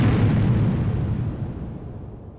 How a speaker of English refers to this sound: He simply says, "Boom," and there is a massive explosion.